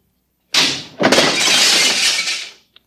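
Glass cooling tubes shatter in two quick bursts, a bright crash followed by a longer spray of tinkling, crackling fragments that fades out, ending with one small final clink.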